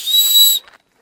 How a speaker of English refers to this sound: Good thing I got my rape whistle. It's true. Here, let's blow that.